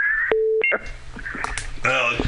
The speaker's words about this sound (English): No, I'm sorry. There's somebody else trying to call through if you guys hear that.